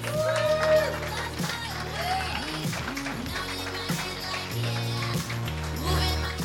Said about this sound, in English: All right, ladies and gentlemen, I would like to introduce your first roaster of the evening. You can see him on Comedy Central's Roast Battle. Please give a big round of applause for Keith Carey.